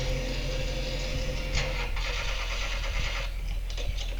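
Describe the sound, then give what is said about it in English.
A car engine cranks over and over without catching, a steady grinding mechanical whir with a few sharper surges, fairly loud, with no voices. “You're gonna flood it. The battery's dead.”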